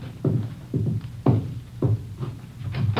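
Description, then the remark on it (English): A steady series of about six dull knocks on a back door, evenly spaced and somewhat muffled, with no voices. “Somebody at your back door.”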